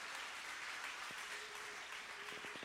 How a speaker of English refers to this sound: Would you clap the Lord, clap your hands and give the Lord some praise.